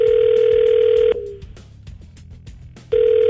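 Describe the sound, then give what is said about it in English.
A phone call to a woman rings out with a steady electronic ringback tone, one long burst followed by a silent gap, then the next ring starting. It's loud and clear, with no voices. “we're going to call her up and find out what's going on.”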